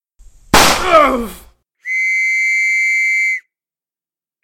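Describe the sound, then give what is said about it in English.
A single loud, sharp gunshot blast cracks out and decays over about a second, followed after a short pause by a steady, high-pitched whistling tone that holds for over a second. “Gunshots! Enemy contact, kill them!”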